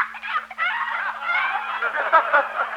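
A chicken squawks and cackles loudly and frantically for a few seconds as it is thrown over a fence, a continuous, agitated burst of harsh, rapid bird cries with no one talking.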